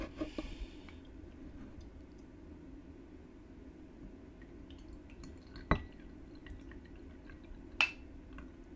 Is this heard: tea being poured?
yes